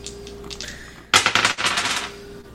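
A sudden burst of hard clattering as two dice tumble and rattle across a tabletop in rapid clicks, slowing and settling after about a second; no one speaks.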